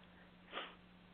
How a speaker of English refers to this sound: Everybody seems to have the sniffles now, too.